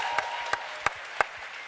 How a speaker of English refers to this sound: Wait, let's give them all one more round of applause for those beautiful voices.